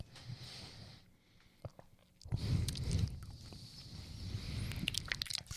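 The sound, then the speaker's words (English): Wet mouth sounds and sloshing lead into a sudden, loud spit of tasted white wine into a receptacle, and the liquid splashes back out, followed by lingering dribbling and slurping noises, with no talking. “God, I just spit it in there and it splashed back and hit me in the eye.”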